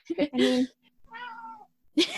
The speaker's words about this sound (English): cat just yowling in the background. I'm sorry. That picked up really well on the audio. I love it. He's being a creep. I don't know why he's being so needy tonight.